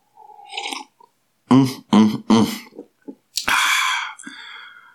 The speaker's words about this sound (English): Yes, it's one of life's pleasures. I leave you with another sip of coffee.